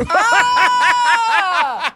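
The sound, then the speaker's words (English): A recording of More FM radio host a radio host snoring, played from a studio button bar: loud snoring that rattles in quick, even pulses, about four per second, with a buzzy, throaty tone that wavers up and down and stays steady for two seconds with no talking. “I actually have in our back catalogue … snoring, and it's on your button bar now.”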